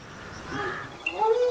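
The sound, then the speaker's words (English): A few harsh, honking calls from grey crowned cranes flying over Lake Obolosat in central Kenya, moderately loud, with a short rising call cutting in near the end over faint outdoor background. “A school of cranes gracefully flies over Lake Obolosat in central Kenya.”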